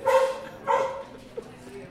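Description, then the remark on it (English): A dog barks twice in quick succession, moderately loud, followed by a faint short yip before it goes quiet. “So yeah, the dog featured a bit there, but good answer.”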